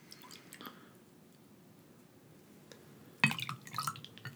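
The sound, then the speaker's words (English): Low-sodium V8 vegetable juice pours and splashes into a glass, a short wet gush after a few faint clicks and quiet drips, with no one talking. “And I see that I have accidentally poured the low-sodium V8 first.”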